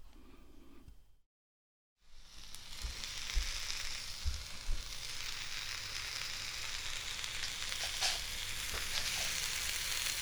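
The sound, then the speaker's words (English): Hot dogs fry and burn in a pan with a steady, loud sizzle, dense hiss dotted with sharp pops and crackles, starting after a brief moment of silence and continuing unbroken with no talking. “Burning up the hot dogs.”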